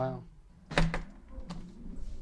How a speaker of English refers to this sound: Right, we've pushed the door open and we've walked straight in.